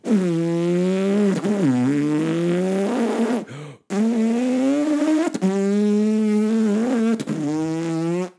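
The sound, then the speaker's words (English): A person imitates a revving car engine with a loud, sustained lip-and-tongue buzz, the pitch rising and dipping like gear shifts, broken by one short pause, with no talking. “Okay, I'm going to do a car noise too.”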